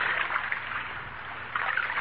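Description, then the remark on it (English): A canoe paddle splashes through water as people ride in a canoe, a steady hissing wash that swells at the start and again near the end as strokes dip in. No one speaks. “There's something about riding in a canoe that kind of makes you think things over.”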